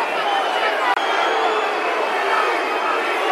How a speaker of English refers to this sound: The four goes down, stays down again. Some excitement to my right. Like screaming abuse at the four.